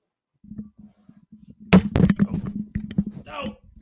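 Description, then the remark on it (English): A dish array gets knocked over, losing the signal: two sharp, loud clattering thuds in quick succession, followed by a scattered rattle of smaller knocks and scrapes over a steady low hum. “I've knocked over the array.”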